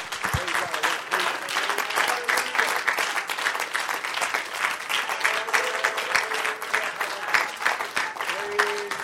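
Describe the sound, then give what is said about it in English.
A large audience claps hands to the Lord continuously, a dense, steady patter of many hands, with faint voices murmuring underneath. “Why don't we put our Bibles down, clap our hands to the Lord one more time.”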